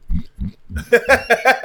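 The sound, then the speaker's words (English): A man imitates a hog call: a few low grunting bursts, then a quick rhythmic run of loud, nasal, strained vocal whoops. “Dude, pig call. Just do that, and then you go.”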